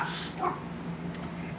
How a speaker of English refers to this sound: My dog's barking.